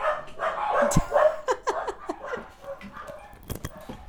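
Dogs bark and yip in quick, irregular bursts, a rapid scatter of sharp high calls mixed with squeaky whines, moderately loud, with a couple of heavier barks near the end.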